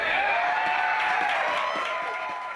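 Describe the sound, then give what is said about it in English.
A large crowd of Roger Wicker's supporters cheers and shouts steadily at a political rally as he follows Musgrove, a dense, loud roar of many voices with whoops rising above it and scattered claps, sustained without a break. “Roger Wicker followed immediately after Musgrove, and his supporters went nuts.”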